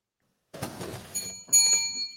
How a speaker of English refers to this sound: There you go. I don't need to download a bell. I have an actual bell.